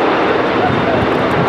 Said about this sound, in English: A Cormorant helicopter was called in, circling the area before lowering a member of the rescue team onto the pier